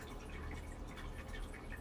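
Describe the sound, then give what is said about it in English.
A steady, soft trickle of running water with faint dripping, continuous, from a small pet water fountain for cats burbling on its own in the background, with no voices. “That is my wonderful waterfall that I use to make sure my cats don't die every 3 days.”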